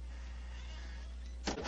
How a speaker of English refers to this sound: Yes, you may go in. Please close the door behind us.